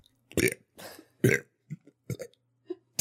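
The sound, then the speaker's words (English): A string of loud burps in quick rhythmic bursts, strung together like someone belching out a short song phrase. Several longer belches mix with brief clipped ones, with no talking. “Can I burp it again right now?”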